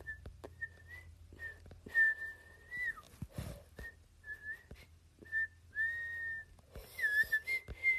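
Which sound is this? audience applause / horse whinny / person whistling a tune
person whistling a tune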